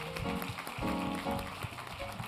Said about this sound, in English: let's get them a round of applause as well.